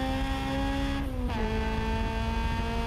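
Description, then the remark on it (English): A car engine revs high and steady at speed, loud, with a brief dip like a gear shift near the middle before the whine resumes at a slightly higher pitch. “It's revving really high.”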